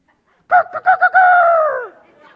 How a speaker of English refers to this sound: And every morning that rooster would crow, and you didn't need an alarm clock. The rooster was going to go off.